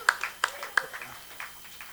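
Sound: audience applause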